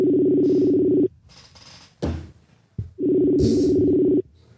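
An outgoing Facebook call's ringback tone: two long, steady, low buzzing rings about a second each, separated by a pause with a brief clunk and rustling noise between them.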